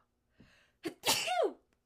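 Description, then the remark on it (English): A single sneeze into an elbow: a quick breathy intake, then a loud, explosive burst that trails off within a second. No talking, with near silence before and after. “She does that every time someone sneezes. I covered my mouth. I did the little elbow.”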